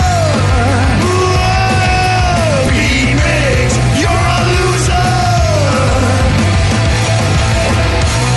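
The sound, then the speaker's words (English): Several voices scream and yell loudly together in drawn-out, rising-and-falling shouts, screaming a name to start the game Beat Mix, continuous for several seconds over a steady thumping bass backdrop. “So everybody scream his name.”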